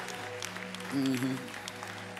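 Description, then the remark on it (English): An audience claps in a steady, dense patter of many hands, with a voice calling out briefly over the applause midway through. “If you're the only person clapping and ain't nobody clapping with you, clap real loud till they start clapping with you.”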